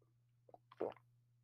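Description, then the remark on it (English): A person takes a quick sip of water: a couple of soft wet clicks, then a brief slurpy gulp, over a low steady hum with no talking. “I'm finna drink a little water, y'all, real quick.”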